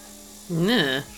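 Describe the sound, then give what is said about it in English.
A brief, wavering buzz lasting about half a second, rising and falling slightly in pitch, likely a voice imitating a hummingbird whirring past, moderately loud. “you get buzzed by what feels like a hummingbird. You hear a little bit of a buzz.”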